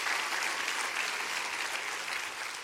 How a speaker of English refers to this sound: All right, everybody, clap your hands real big now.